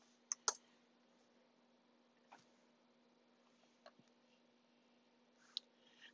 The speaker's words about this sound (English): I'm sorry, because I'll just type it in on my computer. Well, I know y'all heard me typing, but I'm going to get the NLT version.